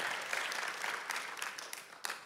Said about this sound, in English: let's give our creative team a big round of applause, because they're investing hours and hours and hours and hours and hours. Thank you so much, your crazy team.